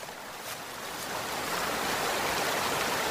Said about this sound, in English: Wow, these waterfalls are gorgeous. Yeah, a lot of people come here just to see Chapman Falls. The water flows from 8 Mile Creek and drops about 60 feet along the granite rocks as a kind of stair step down before gathering into a small pool.